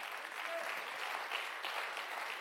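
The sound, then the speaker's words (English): An audience claps steadily this morning in church, a dense wash of many hands applauding at an even level with no voices standing out. “If you're going to clap, give him a good hand clap this morning.”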